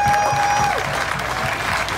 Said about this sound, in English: So I would like to give you a big round of applause for that. So thank you.